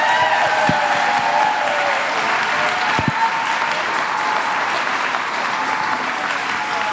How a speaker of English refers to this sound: Now just give the Lord a hand clap.